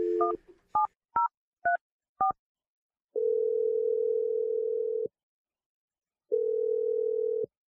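A quick run of five short two-tone telephone keypad beeps, followed by two long, steady ringback tones separated by a silent pause. No one speaks.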